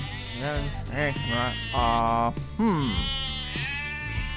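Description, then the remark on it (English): Sheep bleat over and over, several wavering, quavering cries in quick succession, some short and some drawn out, loud, with a few voices overlapping. “A man had 100 sheep, but one could not be found.”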